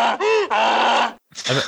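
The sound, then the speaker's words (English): An edited-in donkey sound effect: a donkey brays loudly in harsh, honking bursts, a wavering hee-haw cry that cuts off briefly, then returns with a rougher gasping note, with no voices present. “I'm going to have edited in the donkey sound from that's episode.”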